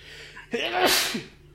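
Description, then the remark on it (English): A single sharp sneeze bursts out, a quick intake followed by a loud explosive release that fades within about a second, with no talking around it. “Bless you. Thank you.”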